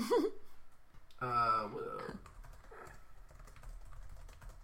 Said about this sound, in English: You allowed typing?